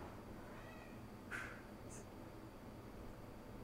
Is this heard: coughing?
no